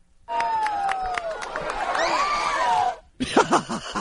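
A crowd gasps and groans together as Bill de Blasio drops a groundhog, a loud collective outburst that swells for a few seconds, cuts off briefly, then resumes with scattered excited voices and cries.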